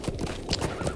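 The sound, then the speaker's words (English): Horse hooves clip-clop in a steady rhythm as a rider rides the horse up a mountain, several distinct hoofbeats within a second, each a sharp knock with some ambient rustle between them. “I'm now riding my horse up the mountain to see if from this point of view, from this high point of view, I can tell, I can see the small passageway that will lead to the northern pass.”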